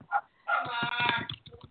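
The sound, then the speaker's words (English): A dog gives one short bark, then a longer, strained barking howl with pulsing, rough bursts. It sounds fairly loud, with no talking. “And a dog.”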